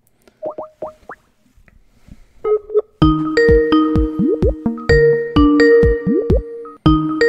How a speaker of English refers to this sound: So the phone is ringing.